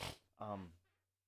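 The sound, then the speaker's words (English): A short, breathy nasal sniff bursts out from a person getting over a cold with nostril sinus issues, followed by a brief voiced murmur, then a low hum fades to quiet. “I apologize for the sniffing, by the way.”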